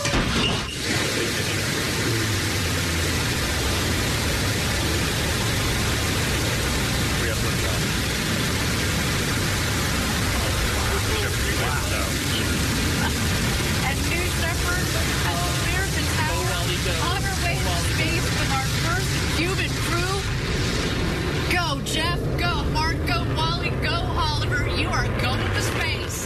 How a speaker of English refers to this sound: So with 20 seconds to go, let's listen in for the launch. Oh, cool. Go with some live audio. T-minus 10, 9, 8, 7, 6, 5, 4. Command engine start. 2, 1.